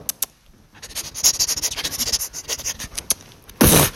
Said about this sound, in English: If you're dropping out, you better sign right here on this paper. Fine.